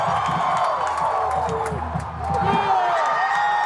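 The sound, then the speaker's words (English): A large crowd cheers and roars continuously at a batter's hits off his bat, with scattered whoops and shouts rising above a steady wash of voices, dipping briefly before swelling again. “This crowd thinks everything off his bat is good.”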